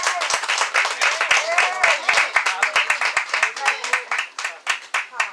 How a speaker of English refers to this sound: So we just thank God. Let's get ready to receive her, amen, by the way of encouragement, amen, of hand claps, amen.